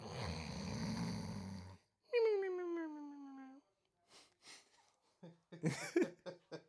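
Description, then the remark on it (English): A person mimics snoring: a long, rough rasping inhale, then a drawn-out whistling exhale that slides down in pitch, followed by a few brief vocal sounds. “And then the usual sleeper segment. Cue the snores.”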